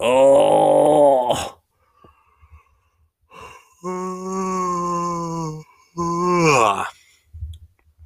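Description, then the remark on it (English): A loud, drawn-out yawn early in the morning with a voiced, wavering pitch, followed by a pause and a second long vocal yawn that rises and trails off, with soft breathy noises between. “I'm sorry for hurting your ears with my yawns and eons.”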